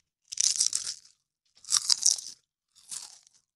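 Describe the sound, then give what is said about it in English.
Three loud crunches from someone chewing a crisp potato chip, each a sharp burst of bright crackling separated by short pauses, with no talking. “Who's chewing that chip?”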